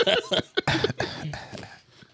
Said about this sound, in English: That's your cough. That's my cough now. Give us a little bit more effort. That's a very light skin cough.